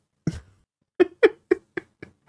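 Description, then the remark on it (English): A person mimics a cat, letting out a quick string of about six short meows that grow steadily softer, preceded by a brief breathy noise, unaccompanied. “Meow. Meow. Meow. Just cut all these noises.”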